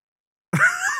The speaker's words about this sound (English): I think he coughed. A little cough.